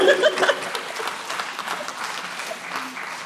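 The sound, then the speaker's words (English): An audience claps steadily, a dense wash of many hands that is loudest at the start and then settles into an even patter, with no voices on top. “Look, go on, clap it.”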